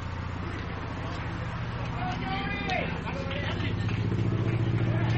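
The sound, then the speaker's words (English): A steady, low droning rumble of several helicopters passing overhead during a baseball game, their throbbing engine noise swelling slightly louder toward the end, with indistinct crowd babble mixed underneath. “Sounds like a helicopter coming over. Sounds like a bunch of them.”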